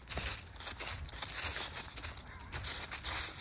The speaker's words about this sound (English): I also wanted to capture a little bit of the essence of the evening. Okay. Some leaf crunching.